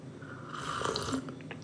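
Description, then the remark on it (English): Someone slurps hot, spicy Blossa glögg (mulled wine) heated in a microwave: a wet, airy sucking sound of about a second and a half, with a few small liquid pops and squishes toward the end. No voices. “My glog just finished in the microwave. Slurp warning.”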